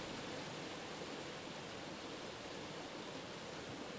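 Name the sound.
flowing river water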